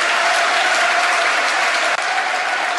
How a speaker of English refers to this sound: Late substitution here. Opportunity to take the applause of the crowd more than anything, I think. Listen to that.